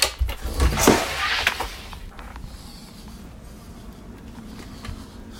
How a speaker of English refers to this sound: He's not saying anything. He's just breathing and filming himself.